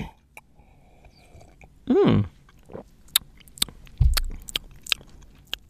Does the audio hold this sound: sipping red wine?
yes